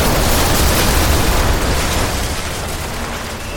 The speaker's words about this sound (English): And that's when the hospital exploded.